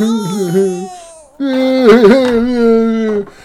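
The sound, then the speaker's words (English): An old man cries, heard while listening at a door. There are two drawn-out, wavering wails separated by a brief pause, the second longer and shakier with sobbing catches. It is fairly loud, with no other voices. “There's an old man crying.”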